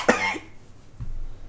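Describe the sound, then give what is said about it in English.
A single sharp cough bursts out, followed by a brief throaty catch and a low murmur of background noise. “That was an actual cough, I think.”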